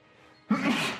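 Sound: sneeze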